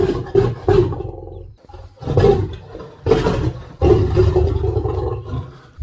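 A male lion at a South African game reserve lets out a series of deep, guttural roars and snarls in loud, rough bursts with short pauses between them, with no one talking over it, warning a worker to stay away from his mate.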